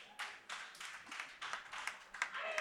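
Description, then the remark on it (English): A short round of applause for the day's DJ: a small group clapping in quick, uneven bursts that blend into a steady crackle, fairly soft and with no talking over it. “How about a round of applause for our DJ today”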